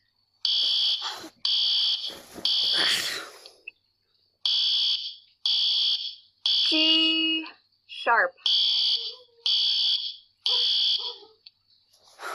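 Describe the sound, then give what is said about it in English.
A building fire alarm blares during a fire drill in steady, high-pitched electronic pulses, about one per second, repeating roughly a dozen times, while voices speak briefly over the shrill tone. “Well, if it's a drill, can't we just use the elevator?”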